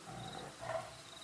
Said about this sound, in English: Deep rumble of the tiger purring can be heard.